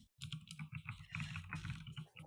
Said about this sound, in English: Who is fucking typing? That was me. I'm looking this up.